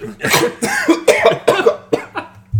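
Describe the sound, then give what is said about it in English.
A person vocally imitates a vacuum cleaner, mimicking someone inhaling food, with a rapid string of about six harsh, breathy, sucking bursts, loud and raspy, somewhat like coughs, with no other talking. “Did you just hear my fucking vacuum sound effect?”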